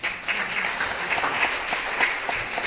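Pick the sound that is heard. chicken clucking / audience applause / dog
audience applause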